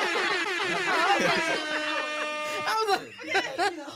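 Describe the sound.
A blaring air horn sounds for about a second, a steady, buzzy tone with many harmonics, amid overlapping chatter and laughing voices that continue after it cuts off.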